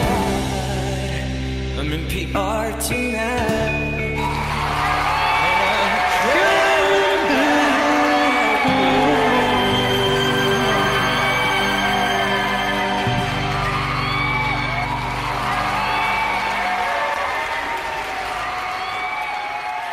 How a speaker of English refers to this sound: Crowd noises and everything. Wow. Yeah, awesome.